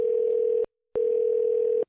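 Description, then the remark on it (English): A phone ringback tone from an outgoing call: two steady, buzzy electronic beeps at one pitch, each under a second, with a short silent gap between. Loud, with no voices. “That ring was strong.”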